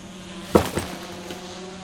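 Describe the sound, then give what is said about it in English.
A shipping drone summoned from the shipping bay flies into the mission room: its steady, insect-like buzzing hum runs throughout, broken by two quick, louder clunks near the middle; no one speaks. “is there a way you can have one of those drones fly in here with all that stuff from the shipping bay?”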